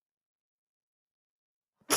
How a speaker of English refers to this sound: I'm gonna sneeze now,